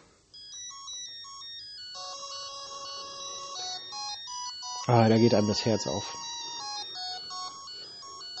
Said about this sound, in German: Ich möchte einmal den Moon-Soundtrack hören.